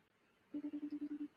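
A phone line sounds a quick, even run of about eight short electronic tone pulses while a call waits to connect, fairly soft and steady, with no voices.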